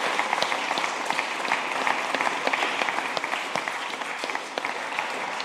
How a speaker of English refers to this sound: Thank you, Pastor. And yes, give me a round of applause for you.